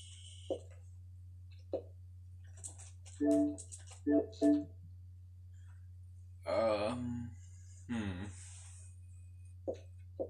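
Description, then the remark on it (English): Scattered clicks of a keyboard being used with an Xbox, sparse and irregular rather than steady typing, sit alongside short vocal sounds like brief hums or grunts, all over a constant low electrical hum. “I'm using a keyboard at the moment for my Xbox.”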